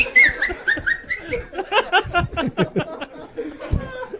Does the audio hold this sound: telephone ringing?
no